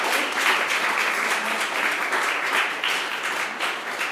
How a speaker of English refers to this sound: Round of applause.